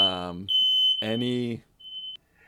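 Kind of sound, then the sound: signal or alarm, fire alarm going off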